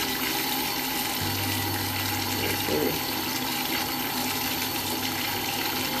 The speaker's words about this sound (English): Even the water coming out of the faucet cold.